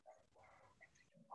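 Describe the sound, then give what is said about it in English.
The speaker's dog barks and yips in the background, a few short, fairly faint bursts with a longer whiny sound between them, and no one speaking. “Sorry, my dog's in the background.”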